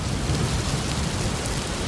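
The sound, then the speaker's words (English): Steady, dense downpour with a constant hiss and a deep low rumble underneath, like a storm with rolling thunder. No voices, just unbroken rain. “I can't hear you as I'm walking through puddles.”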